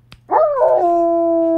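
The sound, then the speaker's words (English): A person imitates a dog with one loud howl that swoops at the start, then holds a steady, drawn-out note. A faint click comes just before it. “I turn you into a dog.”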